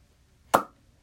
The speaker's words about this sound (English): Hey, guys! I'm back and I brought peanuts! Great, I'm starving! Yeah, same out. Could you help me open the tin? I'm extremely feeble. Oh, sure.